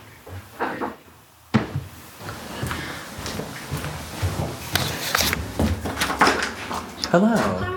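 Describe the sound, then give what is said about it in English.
A couple of sharp wooden thuds at a door, followed by the clatter of it opening and murmured voices with shuffling movement. “Until finally, a knock at the door.”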